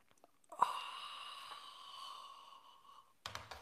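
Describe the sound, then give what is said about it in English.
A single long, airy slurp of someone sipping a drink, drawn in steadily for a few seconds, then a brief rough exhale or clunk at the end. “It's called the simultaneous sip, and it happens right now.”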